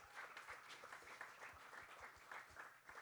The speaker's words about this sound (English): We love some interim applause.